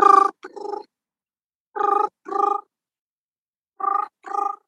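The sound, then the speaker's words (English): A voice imitates an old-fashioned telephone ring, making three pairs of buzzing, trilling bursts with short pauses between them, clear, with no other sounds. “I do quite a good old fashioned telephone impression, which is this.”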